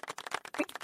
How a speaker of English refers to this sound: What is that? A pleasant golf clap.